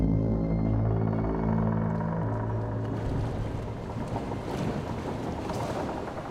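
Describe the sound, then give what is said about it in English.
A deep, drawn-out groaning creak of wooden ship timbers fills the first half, then gives way to a loud, steady rush of water pouring into a hole below, with no voices. “So as Steelbeard is preparing to dive, as you can hear the wood creak and water begin to rush into the hole below you”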